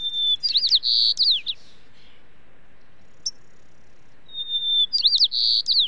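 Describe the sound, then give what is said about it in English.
A white-crowned sparrow sings two clear phrases separated by a pause, each opening with a high whistled note and ending in quick buzzy trills, over quiet background hiss. “In fact, some birds, like white-crowned sparrows, reverted to a gentler volume, singing more softly and with more information in their songs than when they had to compete with the incessant roar of urban life.”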